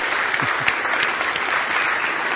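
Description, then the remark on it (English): Steady applause from a crowd, many hands clapping at once into a dense, even wash of sound that holds at a constant loudness throughout, with no voices standing out. “I'll clap for you guys.”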